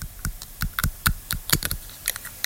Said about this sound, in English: A person chewing on a pen.